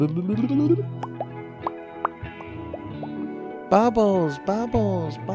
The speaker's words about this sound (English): Bubbles. Hey, bubbles. Bubbles. That's what it is.